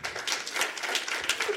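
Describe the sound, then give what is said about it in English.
An audience gives a round of applause to show how many have seen the film Girl 6, a steady, dense crackle of many hands clapping at once that holds at an even, moderate level throughout. “By a round of applause, how many people have seen Girl 6?”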